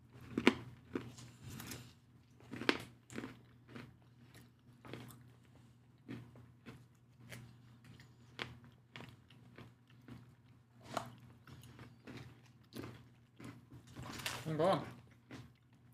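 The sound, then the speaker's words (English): Crunching and chewing on a crisp gingerbread cookie, a steady series of sharp, brittle bites repeating every second or so, with a low background hum underneath. “There is a crunch factor to this, I will say.”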